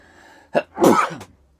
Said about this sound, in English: Excuse me for a second. I think I'm going to sneeze.